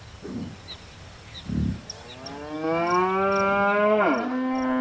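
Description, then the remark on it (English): A single long, loud moo from a cow on a farm swells up after a couple of soft thumps, holding steady before bending downward at the end, with faint bird chirps in the background. “Once they got the pregnant heifers on the farm, they began to milk them and deliver bottles of fresh, sweet milk to the townspeople.”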